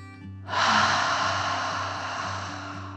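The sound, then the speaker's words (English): A deep, slow 'dragon breath' in and out, heard as a loud, airy rush that begins suddenly and trails off gradually over a couple of seconds. A faint, steady low hum runs underneath, with no talking. “One more. dragon breath in and out.”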